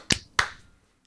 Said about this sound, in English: Okay, clap sync. 3, 2, 1.